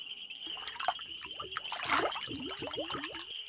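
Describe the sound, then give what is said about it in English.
Water sloshes and trickles as black powder is stirred into it, with continuous splashing and small bubbly gurgles rising and falling for a few seconds. “Now, add the black powder to the water. Mix it up.”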